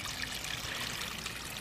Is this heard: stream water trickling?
yes